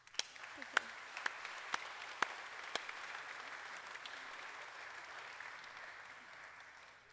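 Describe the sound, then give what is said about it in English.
A church audience at First Presbyterian Church breaks into steady applause to welcome visiting family members, many hands clapping in a dense, even wash, with a few sharper individual claps standing out early on before the sound gradually thins toward the end. “So we want to welcome all of them with our applause.”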